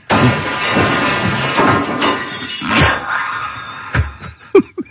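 A glass refrigerator shelf, dropped while being cleaned, shatters on a kitchen floor with a loud crash, followed by a dense spray of tinkling shards and a few final sharp pieces clattering down.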